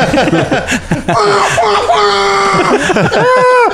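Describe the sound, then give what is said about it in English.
A person screams loudly into a bin, sustained strained wails that rise and fall in pitch, broken up by choppy laugh-like yelps across a few seconds. “You go to a bin and scream into the bin.”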